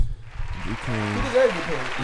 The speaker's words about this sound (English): Yeah, shout out to Jalen Smith for one. We gotta give him a round of applause.